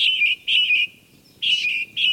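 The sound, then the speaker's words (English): Bright, high-pitched finch song in short repeated bursts of trilled chirps, separated by brief pauses, sounding clear with no talking. “Different enough that the hybrid male's songs didn't attract females of the other species.”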